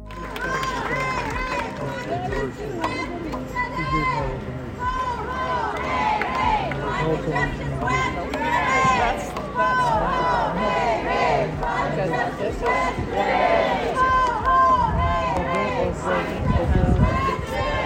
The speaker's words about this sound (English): The crowd was lively and passionate, arriving with signs and showing their support for the cause.